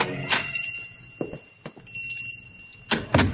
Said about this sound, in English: On a sudden impulse, he pushes open the door and goes in.